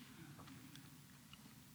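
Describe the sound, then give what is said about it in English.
Someone chews a big piece of communion bread over a microphone and speaker during a church service, with soft, irregular mouth clicks and squelches over a steady low hum. No one speaks. “I hear myself chewing over the speaker.”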